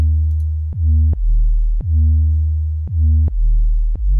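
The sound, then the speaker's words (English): A loud, deep sine-wave bass made with an Operator synth plays a repeating pattern of sustained notes. Each note starts with a quick downward pitch drop from a pitch envelope, giving a punchy attack. A little filter drive gives an 808-like effect. No voices. “This is an operator, sine wave, and a little bit of pitch enveloping, and I think that's really it.”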